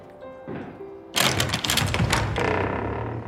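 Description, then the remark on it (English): A large iron door knocker at a gatehouse struck several times in quick succession, loud heavy clanks with a rattling metallic edge, following a quieter moment of low background hum. “Approaching the gatehouse, there's a large iron knocker.”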